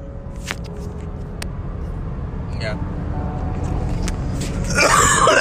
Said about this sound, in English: That cough is fun right there.